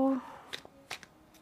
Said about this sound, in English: I try to shuffle on camera, but my shuffling is just not that exciting.